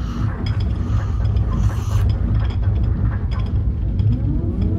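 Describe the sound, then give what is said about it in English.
Heavy mechanical grinding and clanking as ship cannons and shields ready themselves, with a steady low rumble under ratcheting, gear-like clicks that continue loudly for about five seconds without any speech. “Let's ready the cannons and bring the shields up.”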